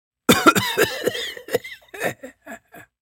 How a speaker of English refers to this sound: Again, the demon coughed badly, and I was convinced it was not in its best health.